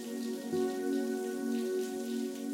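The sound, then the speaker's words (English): Shower water runs in a steady, unbroken hiss for the whole stretch, with a low sustained hum beneath it and no voices. “Luxuriate in the temperature and the flow of water that feels exactly right for you in this moment.”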